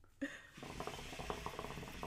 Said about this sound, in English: I got my hookah. See, I hear them bubbles in the background. That's me.